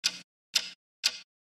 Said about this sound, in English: Little MIDI music here. What is that mysterious ticking noise?